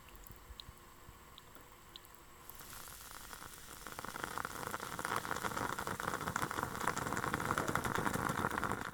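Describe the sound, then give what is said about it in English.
A moka pot starts quietly, then bursts into a steady, bubbling gurgle and hiss as coffee sputters up, growing louder and denser over several seconds, with no talking. “Or listening to the coffee gargle out of my mocha pot.”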